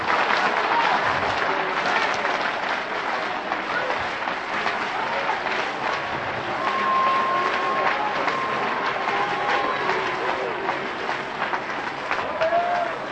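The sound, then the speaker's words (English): A large audience claps steadily for over ten seconds, a dense, continuous wash of applause at an even, loud level with faint voices mixed in. “Clap your hands. Come on.”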